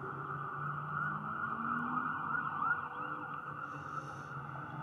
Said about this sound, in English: There's a big fire or something going on right now. Got fire trucks going on.